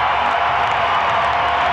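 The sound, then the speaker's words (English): A loud, sustained roar of a sold-out arena crowd cheering at a basketball game, a dense wash of many voices holding steady throughout with no pauses and no single voice standing out. “How about the fans, huh? Sold-out crowd.”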